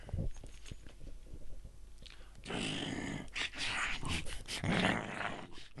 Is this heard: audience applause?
no